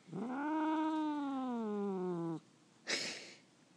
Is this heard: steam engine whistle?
no